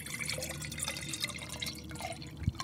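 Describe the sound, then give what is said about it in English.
Wine glugs and trickles steadily into a glass, a continuous liquid pour with small splashy drips, ending with a brief louder clink or splash near the end. “So sit back, pour yourself a glass, and let's hear what the guys have to say this week.”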